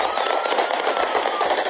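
Palestinian security men fire several sharp gunshot cracks in the air at irregular intervals over the dense, continuous roar of a large shouting crowd surging at the compound as the helicopter carrying Yasser Arafat's body lands.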